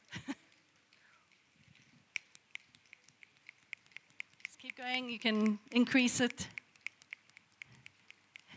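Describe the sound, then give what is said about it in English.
An audience clicks their fingers out of sync, not in rhythm, to make a sound like rain: a scattered patter of soft clicks from the group, fairly quiet and continuous like light raindrops, with a voice briefly speaking over them midway. “I want you to click your fingers, not with rhythm, not in timing, just click your fingers like this. But everyone has to do it. And like, try and do it loud.”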